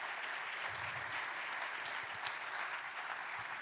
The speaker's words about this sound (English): So I want a round of applause for Aaron Truk and Willard Clapper.